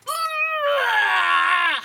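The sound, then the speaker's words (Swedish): A voice imitates a woman's loud, strained scream during a gym workout class, one sustained harsh cry lasting about two seconds, rising then sliding downward at the end, heard alone. “Ja, men som skriker så att man undrar om det pågår en förlossning.”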